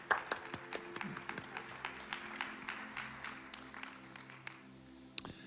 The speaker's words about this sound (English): Come on, let's give a round of applause for Dr. Reverend Dr. Kate Coleman.